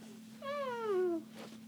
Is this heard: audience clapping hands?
no